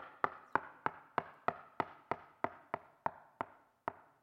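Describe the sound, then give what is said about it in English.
A dozen firm knocks on a door in a steady, even rhythm, each sharp rap ringing briefly with a hollow wooden tone, alone with no voices. “He is at the door of your life knocking.”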